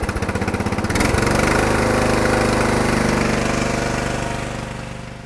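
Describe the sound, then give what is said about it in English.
A riding lawnmower engine runs loud, chugging in quick rhythmic pulses before settling into a steady, rough roar that eases slightly toward the end. No one speaks. “Well, it's been an enjoyable field day here, and I've had fun operating this old rig off a lawnmower.”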